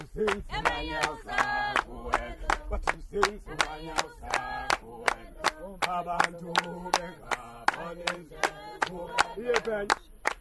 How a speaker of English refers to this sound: The singers stomp in place around a circle, gyrating their arms and torsos in a monkey-like motion.